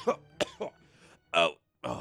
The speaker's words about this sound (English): you're coughing a little bit more, and then... Combat ends and Rylan's just trying to clear his lungs out